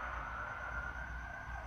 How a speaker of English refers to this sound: I know the mic is picking up on the ambulances because this motherfucker picks up on Leo barking outside, like, pretty far away.